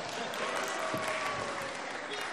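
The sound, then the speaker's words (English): An audience breaks into a big round of clapping to act out Moses hitting the rock in a Bible story, a dense, steady burst of many hands that stays loud throughout, with some crowd voices mixed in. “And then a big clap as he hits the rock.”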